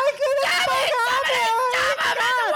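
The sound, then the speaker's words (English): A voice mimics a girl screaming and crying: loud, high-pitched wails that waver and break into sobbing gasps for a couple of seconds. “You have to have some girl screaming and crying.”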